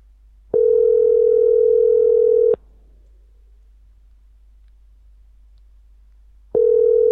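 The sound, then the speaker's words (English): A phone's outgoing ringback tone on a call to a cell phone: a steady, fairly loud electronic purr lasting about two seconds, then four seconds of near silence before the next ring begins. No one speaks. “Pick up the cell phone.”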